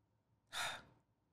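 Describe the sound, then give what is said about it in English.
A single deep breath drawn in through the nose, an airy rush lasting about half a second, then fading into near silence with no one speaking. “Breathe in right now. Just that's air.”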